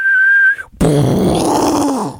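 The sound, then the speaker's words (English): A voice imitates fireworks: a steady, high whistle for about half a second, a brief pause, then a loud, rough, hissing burst that sinks in pitch as it trails off. “Fireworks go...”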